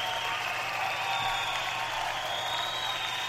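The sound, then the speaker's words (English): Steady, dense clapping from an audience for Michigan State's Connor Cook, Big Ten Quarterback of the Year, a continuous wash of applause at an even level from start to finish, with no voices standing out. “Let's give him a quick round of applause to the audience.”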